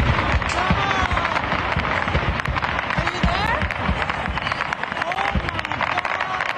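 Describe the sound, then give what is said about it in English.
Dense, continuous barrage of commercial grade fireworks bursting and crackling in a residential neighborhood, with rapid overlapping pops and whistling rises, loud, while a crowd's voices murmur and shout underneath throughout. “And this is commercial grade fireworks going down.”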